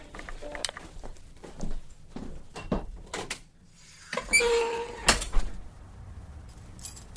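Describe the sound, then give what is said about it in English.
A heavy recording booth door is pushed shut with a muffled thud and a brief sliding rush, surrounded by scattered clicks and knocks of movement, with no talking. “And two, I didn't hear you because I had the door to the booth closed and you cannot hear anything outside of this door.”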